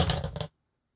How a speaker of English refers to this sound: I'm just rolling two dice, right?